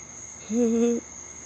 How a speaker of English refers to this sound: I was just standing out here listening to these crickets, and I just wanted to share my crickets with you real quick. You feel me?